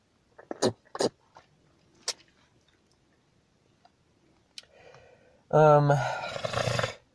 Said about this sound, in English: What if someone's loving this? They're like, this is ASMR for me. I love hearing people hawk loogies. Are there people out there like that?